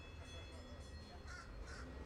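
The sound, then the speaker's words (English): A bird outside calls insistently in a quick series of four harsh, caw-like cries, fairly faint, over a steady low rumble of a passing trolley. “When this is a very insistent. I know. Bird.”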